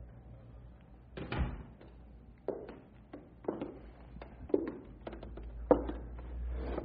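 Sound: door being closed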